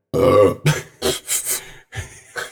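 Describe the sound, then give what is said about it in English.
A loud belch with a drawn-out guttural rumble, followed by several shorter throaty bursts in quick succession, with no other sound. “Is it belching?”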